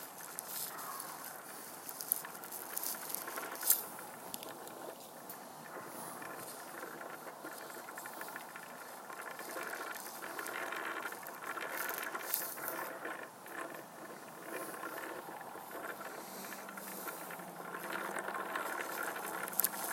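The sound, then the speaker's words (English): A wooden spinning wheel spinning wool into thin yarn turns steadily with a soft, continuous mechanical rattle from its pulley, loosened because the wood has contracted at different rates, dotted with small clicks and knocks. It stays fairly quiet and even throughout, with no one talking. “So the wheel's not squeaking, it is making a bit of a rattling noise just because you know, wood has contracted at different rates, and so there's a little more play, I guess, in the pulley.”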